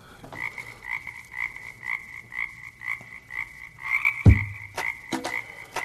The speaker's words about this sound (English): got the song, the toad.